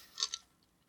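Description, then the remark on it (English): Two quick, soft coughs in close succession, slightly muffled and not very loud, followed by near silence. No one speaks. The cough lingers from a COVID infection caught months earlier. “Sorry, I still got this COVID cough from November.”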